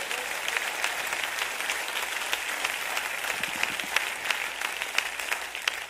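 A crowd claps after being asked to clap if they share a desire to see the great works of God: a steady dense patter of many hands with sharp individual claps standing out, holding at an even moderate level throughout with no talking over it.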